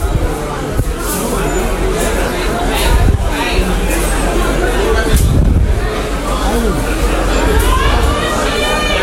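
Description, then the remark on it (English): A dense, loud crowd roar fills the whole stretch inside a Costco store, overlapping voices shouting and screaming at once with no pause, a constant chaotic hubbub of people running in a crush. “People literally are running. And the crush is on. There's people screaming.”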